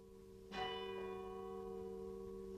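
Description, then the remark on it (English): A single church bell in an outlying parish near Dublin strikes once for midnight mass in the last hour of 1959. Its deep, rich tone swells and then lingers in a long, steady hum that slowly fades. It is dark, with low clouds and light rain falling, and there are no voices. “A light rain is falling, and in one of the outlying parishes, the bell is ringing for midnight mass.”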